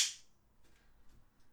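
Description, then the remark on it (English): A single sharp hand clap opens, bright and snappy with a short ringing tail, followed by faint low rustling and a few soft ticks. “here's a clap. And another.”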